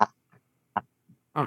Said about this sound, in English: What the hell was that? Is that a dog? It was a hippopotamus.